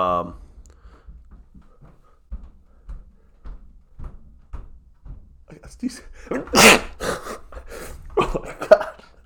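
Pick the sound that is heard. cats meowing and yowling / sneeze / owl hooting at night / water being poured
sneeze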